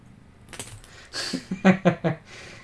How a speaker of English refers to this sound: I don't know if the mic picked it up, but she was just playing with the keys. Oh, the mic totally picked it up.